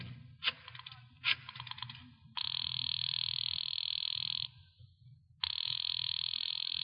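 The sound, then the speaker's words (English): A couple of quick clicks, then a telephone ringing tone sounds in two long buzzing rings with a pause between, heard over a low rumbling background and no talking. “I decided to phone him.”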